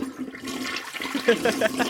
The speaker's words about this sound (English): Lindsey Graham gets the toilet flush.